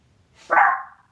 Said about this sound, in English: And the dog, Tucker dog said, approved.